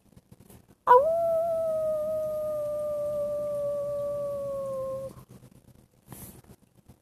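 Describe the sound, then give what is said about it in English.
A single long howl from a wolf named Autumn rises sharply, then holds a steady, slightly falling tone for about four seconds before cutting off, loud, followed by near silence. “Autumn howled.”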